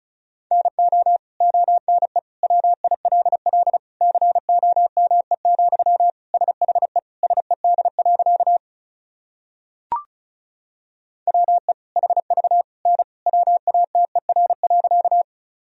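Rapid Morse code tones at about 35 words per minute: a steady mid-pitched beep keyed in quick dots and dashes, with a brief click and a short pause partway through before the sending resumes.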